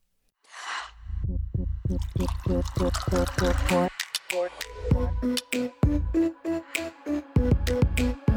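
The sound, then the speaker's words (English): A short hiss, then liquid glugs rhythmically from a bottle into a glass for a few seconds, fairly loud, before giving way to a bright, bouncy musical jingle. “and it's time to pour it out.”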